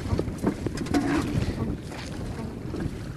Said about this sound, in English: Now the day is extremely cold and wind is blowing and it's raining and we're in a boat. Travelling out on a boat.